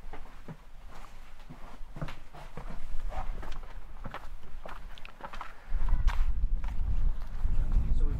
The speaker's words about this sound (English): We've going to come out of the cottage, and there's just a few stepping stones on the sheep-shorn grass, and we're going out to either what was the second cottage, or more likely the cow byre, or the hay shed.